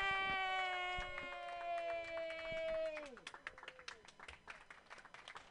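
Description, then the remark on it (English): A long, sustained harmonic tone holds, then slides downward in pitch and gives way to a burst of lively applause from a comedy show audience welcoming the next comedian, with many hands clapping rapidly and unevenly until the end. “And you need to start clapping your hands wildly because it is”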